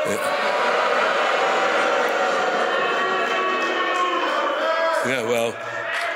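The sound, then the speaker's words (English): A big hockey crowd boos loudly and steadily, a dense, sustained roar of many low voices that shifts near the end, when one wavering tone briefly rises above the din. “That's really, they booed, and yet they beat the Washington Capitals senseless.”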